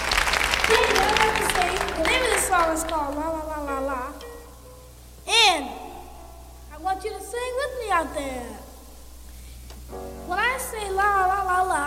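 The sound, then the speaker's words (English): A crowd claps in a steady noisy patter, loudest at the start, while voices with rising and falling pitch talk and call out over it. “Now, ladies and gentlemen, how about another round of applause?”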